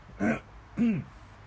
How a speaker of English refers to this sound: So here's the deal. I got to clear my throat. Sorry.